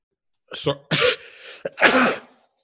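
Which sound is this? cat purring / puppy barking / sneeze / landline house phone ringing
sneeze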